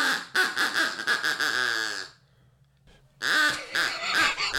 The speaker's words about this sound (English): Is he blowing that duck call? Blowing it real good. Holding that duck call by the shaft.